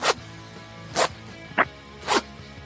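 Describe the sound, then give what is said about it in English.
A zipper being pulled closed on a mailbag in four short, raspy strokes, roughly half a second to a second apart, moderately loud, with no talking. “go ahead and zip that mailbag back up for us, buddy.”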